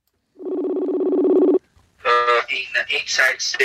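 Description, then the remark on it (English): A steady, buzzy electronic calling tone from an internet phone call, with the phone held up to a microphone, holds for just over a second, then cuts off, and after a short pause a voice begins speaking. “we basically had to get a call happening with them on the internet and then put the phone up to our microphones and speak to them across the seas.”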